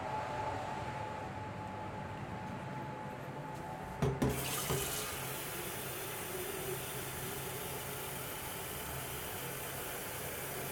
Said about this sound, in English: I'm just going to fill up this water.